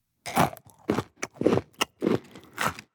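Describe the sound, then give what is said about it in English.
Loud crunchy chewing of food, with about six bursts of crackly biting and munching in a steady rhythm and short pauses between bites. “Chewing is when we use our mouths to break up the food we eat before we swallow.”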